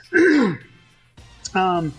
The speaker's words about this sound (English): Sorry, I gotta just clear my throat.